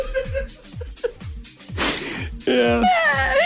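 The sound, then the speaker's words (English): A voice attempts beatbox bass: a steady run of low, booming thumps about three per second, overlaid with strained, wheezy vocal noises that rise into a harsh, pitched wail near the end. “Bass! Bass! Give it a beat now!”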